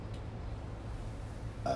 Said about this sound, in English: Excuse me. I always gotta burp. I feel burping safe. And that's not a lot of gas.